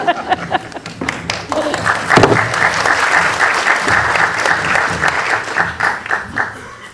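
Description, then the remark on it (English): A room full of people at a film screening applauds steadily, welcoming host Deirdre O'Kane and co-directors Gary Keane and Andrew McConnell to the stage, a dense wash of many hands clapping at once, sustained and fairly loud throughout with a few sharper individual claps near the start. “Keep clapping till we get the chairs, if you like.”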